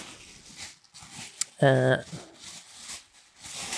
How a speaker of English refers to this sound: It's a nicely wrapped. It's got a little bow on it. Mm. Tissue paper. You can hear. Let me open it.